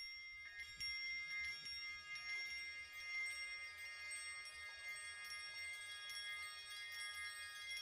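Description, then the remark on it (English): Wind chimes ring continuously, with many high, bright metallic tones overlapping and fresh strikes every second or so, forming a shimmering sustained wash at a fairly soft level with no voices. “So this is what the wind chimes sound like.”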